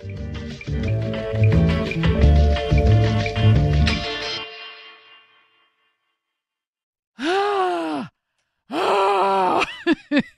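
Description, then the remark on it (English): Music plays for about four seconds and fades out. After a short silence, a person warming up their voice before on-air work makes two wordless vocal warm-up glides, its pitch sliding up and then back down in loud, arching siren-like sweeps. “This is how I prepare for on-air work.”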